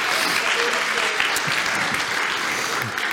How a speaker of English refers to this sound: And I know, why don't we give him a round of applause for all that he does?